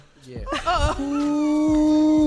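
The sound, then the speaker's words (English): A dog makes a short wavering whimper, then one long, steady howling whine that holds loudly to the end, with a few faint barks in the background. “Good dog.”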